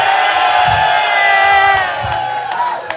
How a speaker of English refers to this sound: We'll just let's get a cheer